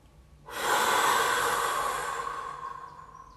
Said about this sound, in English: Inhale. One more hold. And big exhale.